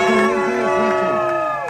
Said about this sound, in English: Folks, the louder you cheer, the faster they go.